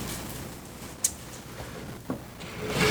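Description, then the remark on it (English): A wooden door shuts within a shop, giving two short, sharp knocks about a second apart over a steady hiss of background noise, with no voices. “And as he does so, you guys hear the shutting of another door within the shop.”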